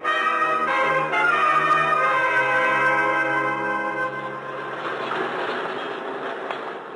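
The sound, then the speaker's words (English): A subway train comes into a station, its loud metallic screech and ringing whine giving way to a steady rumbling roar as it slows. No voices. “The next station stop, we get off.”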